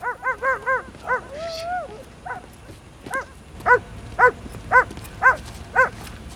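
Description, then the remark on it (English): A dog barks, starting with a rapid flurry of yaps and a brief whine, then settling into steady, evenly spaced loud barks. No one speaks. “Oh, I don't know what's wrong with him now, but this dog has to pee every 15 minutes.”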